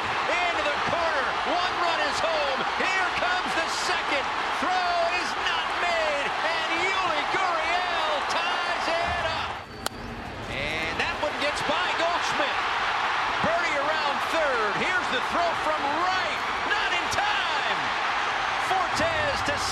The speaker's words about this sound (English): Yeah, that excitement and cheering wasn't on the Cardinals side. It was on the Marlins side. That was from Monday's game, where Andre Pallante blew things up in the seventh inning and the Cardinals fell 5-4.